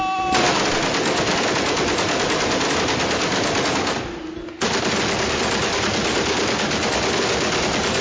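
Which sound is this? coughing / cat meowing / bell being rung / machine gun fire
machine gun fire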